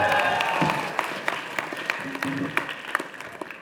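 An audience claps in a steady burst of applause, dense overlapping hand claps with sharper individual claps popping through, holding fairly loud for several seconds.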